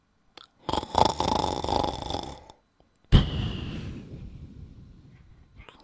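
Two loud, rasping snores of an old witch fast asleep, apparently voiced by a person imitating the sound: a long drawn-in rattle, a brief pause, then a sharper burst that gradually fades out. No speech.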